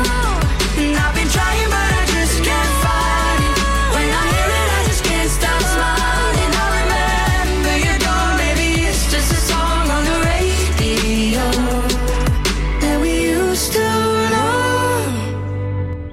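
A loud pop song plays steadily, with a singing voice over thumping bass, drums and layered instruments; the sound thins out and cuts off right at the end.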